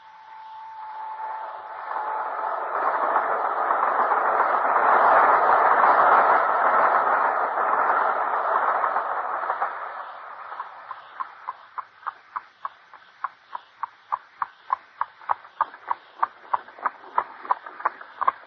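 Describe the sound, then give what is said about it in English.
A train rolls along the rails, its rumble swelling to a loud roar before settling into a steady, quickening clickety-clack of wheels over rail joints. No voices. “Our only hope is to take the very first train in the morning.”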